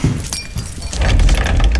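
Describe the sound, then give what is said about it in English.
A coffee cup topples and shatters, a dense burst of breaking ceramic with bright clinking shards over a low rumbling thud, loud and busy for under two seconds. “My coffee, you knocked me right into the flux drive switch!”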